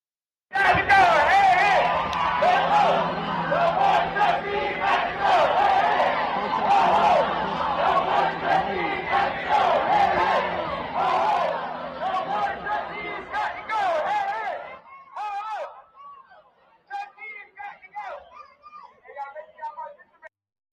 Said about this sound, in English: what you heard right there were a group of students protesting on campus.